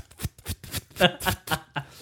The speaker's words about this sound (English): I'm going to shuffle, I don't know, 23 cards into R&D. I didn't draw 23 cards.